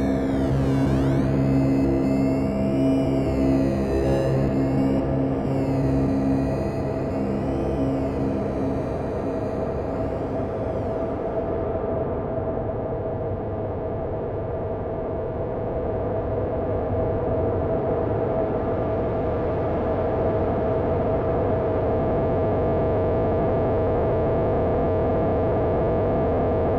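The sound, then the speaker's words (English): A dry, harsh synthesizer tone from a Kitty Eyes module, heard by itself without reverb or delay, churns chaotically without repeating, its upper harmonics warbling and sweeping at first before settling into a dense, gritty, almost noise-like drone that holds steady and loud throughout. “But if you listen, so right now it's obviously in a chaotic state. There's no repetition. It's almost like noise, but it's not quite like noise.”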